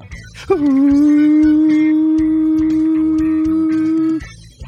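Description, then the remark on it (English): A Razorback hog call, "Pig Sooie", calling the Hogs: one loud human voice holds a long, steady, mid-pitched howl-like note for several seconds before it abruptly stops. “Call the Hogs right now.”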